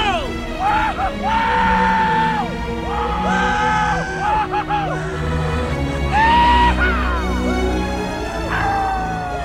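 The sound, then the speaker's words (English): A large crowd roars continuously for Aegon, with many voices yelling, whooping, screaming and cheering in overlapping, rising swells that stay loud throughout, chanting "Aegon the King, long live Aegon." “And it says Aegon is standing there basking in the love of the crowd, and they're screaming, chanting, "Aegon the King, long live Aegon." The crowd goes wild.”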